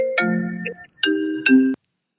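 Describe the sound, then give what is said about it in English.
A phone ringtone for an incoming call plays a short electronic melody: two bright, chiming phrases with sharp attacks and sustained tones, loud, then cuts off abruptly into silence. No one speaks. “When the ringtone stops, you know Danny has logged out.”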